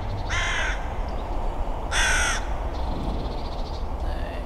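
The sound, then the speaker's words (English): A carrion crow caws loudly outdoors during a dispute with a magpie over the tallest chimney on houses beside a lane: two harsh, rasping calls about a second and a half apart, then a fainter third, over a steady low background rumble. “Carrion crow won, incidentally.”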